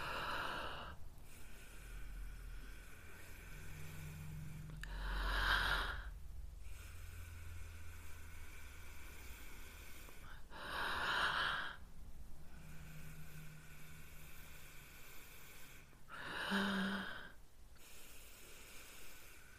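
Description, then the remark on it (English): Three forceful, breathy exhales through the nose during a breathing meditation, taken at one's own pace, each a short whooshing burst spaced about five seconds apart, with quiet hiss between them and no talking. “So to begin, breathing in, exhale out the nose at your own pace.”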